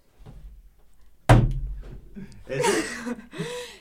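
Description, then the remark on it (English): A door slams shut once, loud, with a sharp hard bang that quickly dies away. A few seconds later, people break into chuckling laughter. “Hey, that wasn't me. You should have slammed it her way.”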